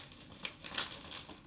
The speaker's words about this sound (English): Alright, and it's open. See what's in here. It's just a bunch of paper. Just gonna take through that real quick.